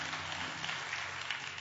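A church audience claps hands together for the Lord at the end of a sermon, a dense, steady wash of many overlapping claps with no pauses, a low hum sustained underneath.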